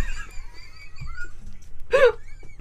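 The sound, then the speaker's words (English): A voice imitates a small, high-pitched dog fart: a thin, wavering squeak, then a short, breathy, squeezed burst near the end. Fairly quiet. “Sometimes they go like a high little noise.”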